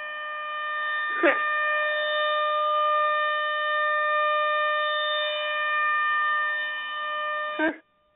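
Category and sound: signal or alarm, tornado warning siren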